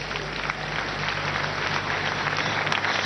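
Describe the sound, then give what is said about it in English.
A church audience claps for Jesus together in a dense, steady wash of applause that stays loud and even throughout, with no voices standing out above the clapping. “Clap for Jesus.”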